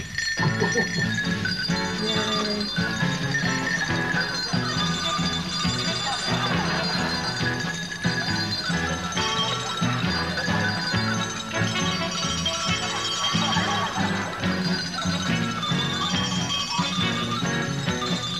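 A lively tune is played expertly on bells as a performance act, bright metallic notes following one another in a steady, continuous melody, fairly loud throughout.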